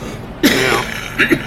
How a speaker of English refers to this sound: But, sorry, post-COVID cough.